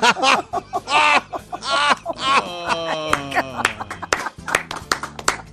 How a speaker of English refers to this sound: You got a standing ovation